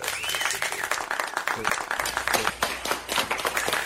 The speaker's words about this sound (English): The red-haired cop handed me a Guinness and they all began to clap.